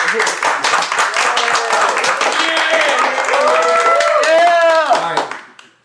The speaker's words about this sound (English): I appreciate all of you for coming out today. You all deserve a round of applause. You can clap now.